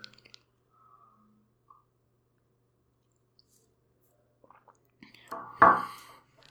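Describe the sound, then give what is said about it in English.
A quiet stretch with faint small clicks, then one airy slurp of someone sipping hot tea, swelling and trailing off within about a second. Nobody speaks. “I'm going to take a sip of tea first and then we'll drive in.”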